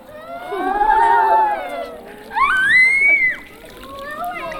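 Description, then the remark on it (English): Water is poured in two moderately loud bursts, a longer pour and then a shorter one, each with a splashing, gurgling tone that shifts and rises in pitch. “Okay, so I'm going to keep pouring.”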